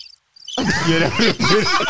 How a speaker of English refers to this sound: The cricket noise is the first one to come up, like, come on.